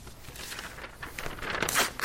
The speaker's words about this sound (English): You guys, crumple those up as tight as you can get them.